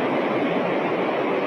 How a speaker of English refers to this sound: Okay. Here's airplane sleep.